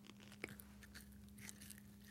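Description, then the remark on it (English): Someone chews a supposedly all-natural gummy snack in a home studio, a sharper bite early on followed by soft, sticky chewing noises over a steady low hum, with no talking. “It's that kind of like all natural gummy snack, even though I'm sure it's not all natural.”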